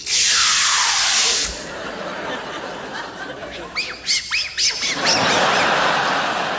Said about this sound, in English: Polishing the table with sooty there.